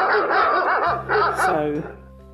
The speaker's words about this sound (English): I don't know where that dog sound just came from, but I hope you all have a merry Christmas if you celebrate.